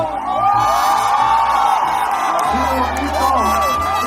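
Loud, festive shouting and whooping from a group, with long rising and falling yells layered over a steady low hum, filling the whole moment without any talking.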